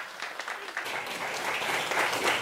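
Audience applause, a dense wash of many hands clapping that holds steady and swells slightly louder toward the end, with no voices rising above it.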